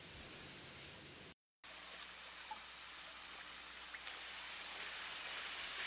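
A steady, dense hiss of hail coming down outside during a storm, with a few sharper ticks of stones striking a surface. The sound drops out briefly near the start, then continues unbroken.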